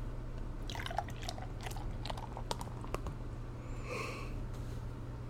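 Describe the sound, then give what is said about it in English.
A standard, lower-alcohol wheat ale pours into a glass with a soft, fizzy crackle and a few small clicks, swelling into a brief gurgling rush near the end, all over a low steady hum. “I'm gonna pour this beer here.”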